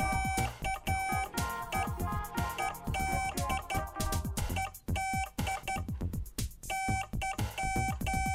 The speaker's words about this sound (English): You've got the sheet of Morse in front of you. Could you send a message to our audience, please? A message? You want a full message? Oh, just a word. Okay, that's fine. I'll do that for you. She's got a finger on the Morse key here.